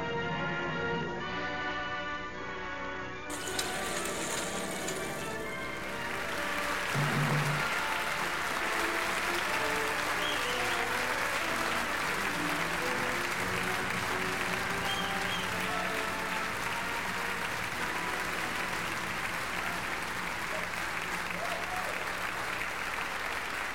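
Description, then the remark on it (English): After a brief musical opening, a large crowd in Halifax at the Summer Stock stage bursts into steady, dense applause for CNY Table Reads that carries on loudly and evenly for about twenty seconds without letting up. “Oh, a lasting applause from the crowd here in Halifax as CNY Table Reads bids us adieu one final time on the Summer Stock stage.”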